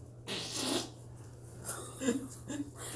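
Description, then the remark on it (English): A real fart: a single breathy, spluttering burst lasting under a second, fairly quiet, followed by a few soft rustles over a low steady hum. “For those of you listening, that was in fact a real fart.”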